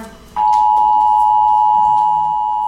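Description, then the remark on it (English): An emergency action notification alert tone in a US national emergency broadcast interrupting TV programming cuts in abruptly after a brief pause and holds as one loud, steady, piercing electronic tone until the end, with no talking over it. “Emergency action notification.”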